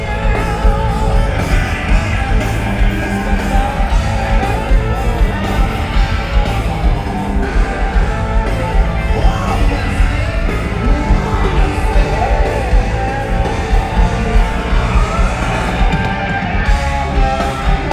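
Loud, dense live heavy rock plays continuously, with a wall of distorted guitar and drums and a singer screaming over it during the guitar solo, crowd noise faintly blended into the mix.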